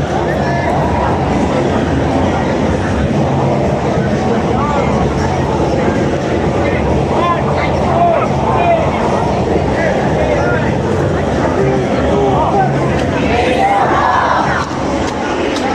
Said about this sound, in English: You hear the crowd? We support!